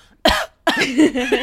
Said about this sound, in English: It's like, oh, I have a cough.